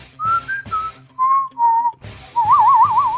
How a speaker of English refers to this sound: What was that whistling? Is that a clue?